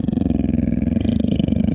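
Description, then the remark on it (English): A deep, furious growling of a specter rumbles steadily for about two seconds, low-pitched and rough, with a rapid pulsing throb running through it and no talking over it. “He heard the furious growlings of the specter.”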